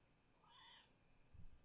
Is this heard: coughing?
no